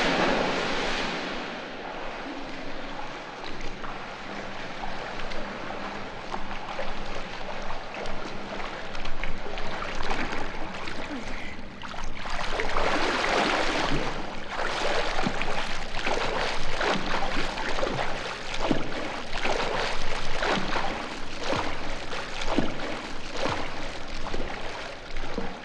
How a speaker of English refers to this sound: Then, just opposing all that, is the very soothing sounds of Julie swimming through water.